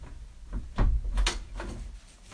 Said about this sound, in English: This nigga opened the door raw hand, though.